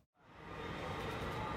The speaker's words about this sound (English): As the first passenger train pulls in at the 700,000-square-foot terminal, located below the current rail hub.